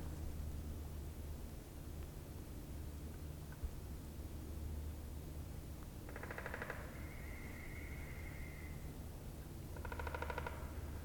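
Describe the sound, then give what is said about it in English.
Two rapid drum rolls of male woodpeckers hammering on a trunk or branch at Haslin Swamp Nature Sanctuary, with everything frozen, each a burst of fast knocking lasting under a second, separated by a few seconds over a steady hiss of background noise, with a thin whistled bird note between them. “And for woodpeckers, instead of song, they do drumming.”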